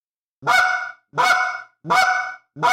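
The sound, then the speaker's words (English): Four loud clucks blown on a goose call in a steady rhythm, each a short, bright, reedy honk with a brief pause between them, and no talking. “Then the cluck is just oof.”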